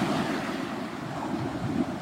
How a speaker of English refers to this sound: Let's breathe in the energy of the waves.